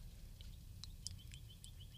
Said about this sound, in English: Let's listen to that bird.